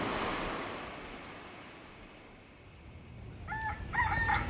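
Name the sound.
rooster crowing at dawn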